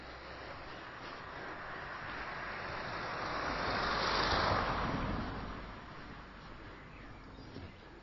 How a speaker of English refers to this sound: Oh, here we go. Here comes a car.